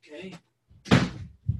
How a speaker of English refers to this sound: Hold on, let me shut the door over here. It's a little loud.